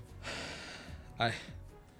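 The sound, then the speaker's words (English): A woman takes a long, shaky inhale of heavy breath, struggling to speak, then a sudden voiced gasp that catches in the throat, fairly quiet, with no words spoken. “You see that like she looks really shaky as like she's breathing heavy.”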